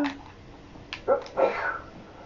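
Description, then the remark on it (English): A dog named SpongeBob sneezes: a couple of short, sharp snorting bursts mixed with brief whiny, whimpering tones, fairly quiet over a low background hiss. “I heard him sneeze.”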